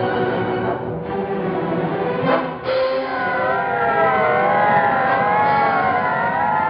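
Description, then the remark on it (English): About half a dozen police squad car sirens wail at once, their rising and falling tones overlapping loudly over a rumble of engines and traffic, with no one speaking. “Half a dozen squad cars were in action.”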